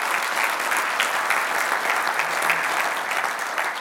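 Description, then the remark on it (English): Steady, sustained applause from a church audience for the volunteers and staff, a dense wash of many hands clapping at an even, loud level throughout without a break. “So if you could just clap, give them a hand clap.”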